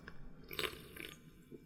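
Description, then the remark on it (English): Wet slurping of a canned drink, with two short sips in quick succession over a quiet background and no voices. “Oh, it's slurping time.”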